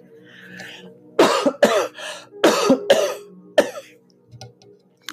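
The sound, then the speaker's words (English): A person clears their throat several times, a series of harsh, raspy bursts in quick succession, loud against an otherwise quiet background with no talking. “And for me, that included clearing my throat.”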